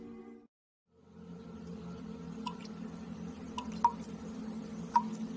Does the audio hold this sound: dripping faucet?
yes